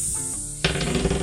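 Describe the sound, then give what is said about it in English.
A person imitates a snake, letting out a sudden loud, breathy hiss that starts abruptly after a brief low hum and holds steady for under a second. “I hiss.”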